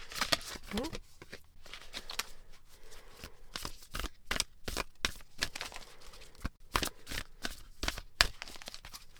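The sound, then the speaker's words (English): Cards from the Starseed Oracle deck by Rebecca Campbell are shuffled for a card pull in a steady run of quick, crisp riffles and soft flutters, with sharp papery snaps recurring every half second or so for several seconds. “I'm going to be starting off the episode with a card pull.”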